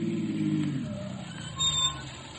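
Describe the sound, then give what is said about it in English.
A car engine rumbles loudly, then its low drone steadily fades as the vehicle pulls away, with faint background noise and no voices. “Out of all the cars on the street, 100 criminals picked mine to go to a wedding.”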